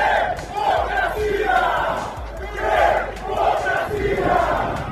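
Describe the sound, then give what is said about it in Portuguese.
A large crowd of young people in a Brazilian capital shouts a rhythmic protest chant in unison, loud and continuous, with swelling bursts of voices repeating in a steady cadence over a low rumble. Many are linked to antifascist organized football supporter groups, carry club flags and banners, and are confronting Bolsonaro supporters. “Esses jovens, que portam bandeiras e faixas de seus clubes, têm um grito urgente.”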